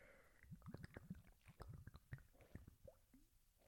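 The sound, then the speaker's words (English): Wet mouth sounds of someone sipping and swallowing water, a quick series of soft squishy gulps and liquid clicks with no talking. “Okay, quick drink of water here.”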